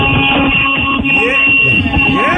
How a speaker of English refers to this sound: Well, then I know I'm going to sound like a child, but you're driving a truck. Can you honk your horn for us? Here we go. Here, I'll roll the window down so you get the full effect. You ready? Here we go.